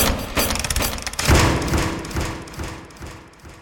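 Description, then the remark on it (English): A heavy crash as the giant King of the Elves smashes through double doors, with a loud splintering impact followed by rattling, clattering debris and a few dull thuds that fade away. “The voice was followed by the giant King of the Elves, who smashed through the double doors.”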